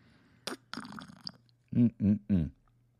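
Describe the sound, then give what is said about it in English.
A wet slurp of hot green tea with lime and honey sipped from a coffee mug, followed by three short voiced gulps or satisfied hums in quick succession. “On the Sword Swag, you're going to find our wonderful Sword of the Spirit podcast coffee mugs, which, as usual, I have mine right here. And let's slurp for you.”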